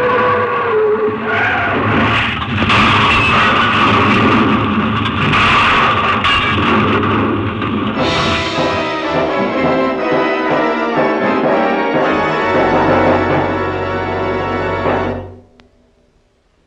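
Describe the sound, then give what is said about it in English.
A loud, chaotic plane crash: roaring engine noise with screeching and clattering, shifting halfway into a sustained whining drone before everything cuts out abruptly. No one speaks. “Oh, bad crash. Afraid not. Too bad about your plane.”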